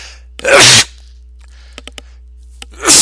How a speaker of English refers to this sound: I'm going to sneeze.